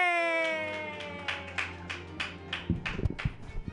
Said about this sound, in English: And right now, clap your hands together for J.W. Blunt.